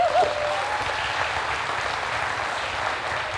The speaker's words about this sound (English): Will you guys give her a round of applause as she comes up?